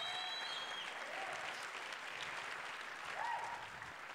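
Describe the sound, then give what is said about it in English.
A worshipping church audience claps hands in a sustained, dense burst of applause, with scattered cheers and whoops rising above the steady wash of clapping. “Clap your hands for the recompense.”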